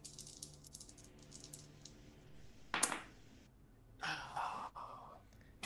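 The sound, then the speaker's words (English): Dice, including a D12, rattle and clatter in a couple of short bursts, a bright sharp rattle followed by a longer rolling clatter, with no talking over it. “Oh, you got to roll his it's an imposed roll, isn't it?”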